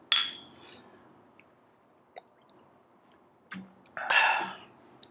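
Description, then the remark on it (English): Glasses clink together in a toast, a few bright, ringing taps scattered over several seconds, with a faint murmur underneath and no one talking. “Man, cheers.”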